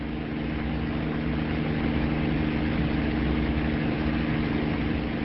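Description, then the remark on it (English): A helicopter engine, flying over the ocean, drones steadily with a low, humming whine and a dense rumble, holding an even loudness throughout with no voices. “It's a helicopter, Jamie.”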